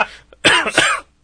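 A short burst of close, raspy coughing: a brief hack followed by a heavier double cough, loud and harsh, with no talking.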